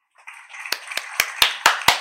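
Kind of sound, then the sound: sound effect, hand claps sound effect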